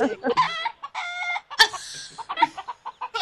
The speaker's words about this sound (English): And a chicken.